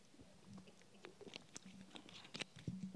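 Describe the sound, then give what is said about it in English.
Quiet mouth sounds of someone sipping water: soft wet slurps, small clicks and swallows in an irregular patter, with no talking. “Got to have a little sip of water where I can really bring the finale on.”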